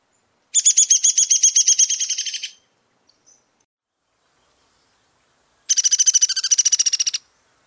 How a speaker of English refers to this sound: It is somewhat excited string of hoarse, high-pitched notes that descend in pitch toward the end. Remember, a downy goes down. Downy is clearer than hairy woodpecker and is usually down-slurred and accelerating.